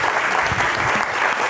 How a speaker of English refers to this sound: Stan put this together just for tonight, and please reflect on that as you give him a big round of applause. We're so happy to have Kim Stanley Robinson back.